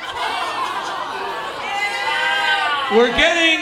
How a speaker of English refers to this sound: I'm booing this guy because we're getting into too straight to fuck territory.